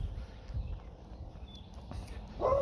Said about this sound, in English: And you're hearing a dog barking. I'm walking by a house with a dog barking. That's what happens when you record while you're walking outside in the morning.